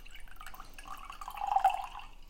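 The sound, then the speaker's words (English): A stirred cocktail of vermouth and maraschino is strained from a shaker into a coupe glass: a soft, steady trickle of liquid with a few drips, swelling slightly louder and brighter toward the end, with no talking. “Pop the strainer back on top of the shaker and strain into a coupe glass or something similar.”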